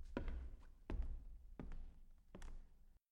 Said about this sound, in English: It was dark at the Noivean Palace. While some steps were slightly perceived on the hall, as if whoever was walking tried not to make any noise.